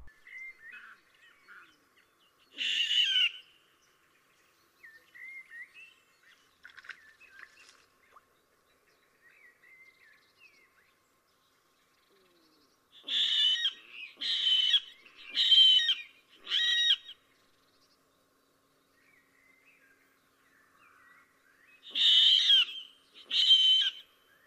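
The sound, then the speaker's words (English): A water rail's shrill, squealing calls come in loud bursts: one early, then a quick run of four pulsed squeals, and two more at the end, with faint chatter between. “Since water rails live in reed beds, it's difficult for them to make eye contact with each other, so they have a loud call, which sounds a bit like a long drawn out, high pitched squealing piglet.”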